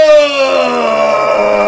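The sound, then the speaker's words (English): A person lets out one loud, sustained bellowing roar, imitating a mighty bellow to launch an attack in a role-play game: a strained wailing cry that slowly slides downward in pitch for well over a second, with no other talking. “Okay, so I am going to unleash a mighty bellow and attack.”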